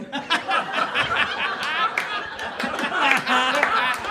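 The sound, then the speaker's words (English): A live audience claps and laughs together, scattered hand claps blending with cheering and excited chatter. The crowd noise stays fairly loud and steady for the full four seconds. “Applause. Yeah, applause break.”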